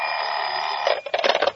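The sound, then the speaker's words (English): A telephone rings with a steady, harsh electric buzz for nearly a second, then breaks into rapid rattling bursts before cutting off. The ring is loud and sounds on its own. “Just the phone ringing.”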